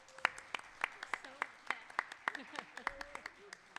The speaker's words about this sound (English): All right, let's give them a quick round of applause. Thank you for everybody.